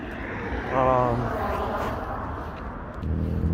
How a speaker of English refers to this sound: You might hear some cars driving by. It's because I'm right next to the road.